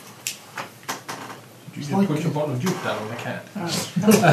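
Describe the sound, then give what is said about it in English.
A few sharp wooden creaks and clunks, like a chair straining and coming apart, sound in the first second or so, followed by people talking over the rest. “You killed the chair. Okay. No. It's coming apart.”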